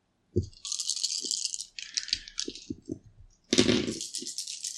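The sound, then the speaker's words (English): Dice rattle in a cup with quick clicking bursts, then spill out in a loud, clear clattering roll, with no voices. “And I'm going to take two scars to give me two more dice.”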